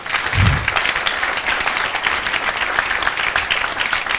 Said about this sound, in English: Give the Lord a clap offering here.